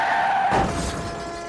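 A brief high tire squeal gives way to a sudden, loud car crash as a car rear-ends the vehicle in front of it, a single heavy impact with a rumbling, crunching tail. No one speaks.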